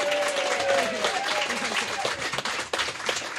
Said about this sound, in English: And I just want everybody just to give her a round of applause